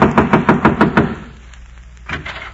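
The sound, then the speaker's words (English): A quick, even run of heavy boot steps as King George's men march up to the old inn door, about seven in a row, thudding loudly, then fading to quiet before one more dull thump. “King George's men came marching up to the old inn door.”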